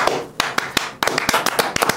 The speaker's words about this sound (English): I was going to clap. Then I was like, I don't want to clap over my own statement.